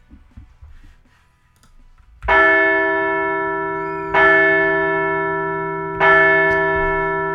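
A large bell rings three times at an even, slow pace, each loud metallic strike followed by a long shimmering decay that carries into the next. Quiet background before the first strike.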